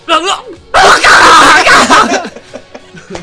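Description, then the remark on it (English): A person lets out a harsh, raspy, drawn-out scream imitating a frantic zombie, loud, lasting about a second and a half, with brief vocal sounds before and after. “Just do your frantic zombie scream.”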